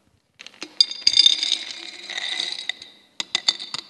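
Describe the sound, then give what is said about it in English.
A glass jar of chocolate chuckles is handled: a few sharp clinks, a sustained gritty scrape lasting over a second, then a brief pause and a quick run of light taps and rattles. “So as a means of illustrating, I have a jar of normal chocolate chuckles.”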